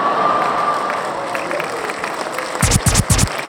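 A steady, hissing wash of applause-like sound effect with a crowd feel, ending in three loud, rhythmic whooshing bursts before it cuts off abruptly.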